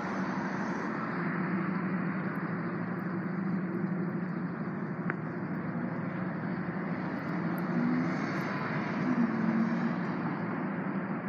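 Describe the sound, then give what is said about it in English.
A cherry red Chevrolet's engine revs across the street in a steady, sustained low roar that holds its loudness throughout, with no voices and no other distinct sounds. “Nice cherry red Chevrolet across the street. Rev those engines.”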